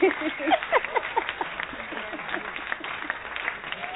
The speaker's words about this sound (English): Yes, I like the applause. I like the applause. Well, that's how I felt, but I thought bringing a crowd might be more effective.